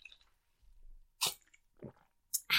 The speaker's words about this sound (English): Beautiful. We just drank our water because hot, healthy girls in summer drink enough water so they don't get dehydrated, because water is good for your skin.